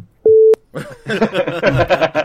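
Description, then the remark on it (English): A single loud censor beep, a steady mid-pitched tone lasting about a third of a second, cuts in and is followed by voices talking and snickering. “I love that there's no cusses, but when you beep it out perfectly, it sounds like there's some dirty shit in there.”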